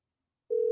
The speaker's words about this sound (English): This is Bluetooth, right, or the phone? It should be Bluetooth. I hear the phone ring.